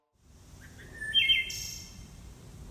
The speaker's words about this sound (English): Oh, wow, that's like a ton of birds.